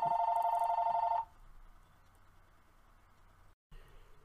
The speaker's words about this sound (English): Sorry about that, guys. The phone rang.